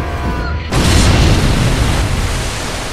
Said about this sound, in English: Leading the incoming Avenger just enough, the red-gold streaks of lead whiz through the air, blasting the low-slung torpedo mount, shearing the bomb off, sending it tumbling end over end and bursting on impact with the sea.